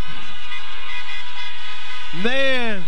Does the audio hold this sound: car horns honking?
yes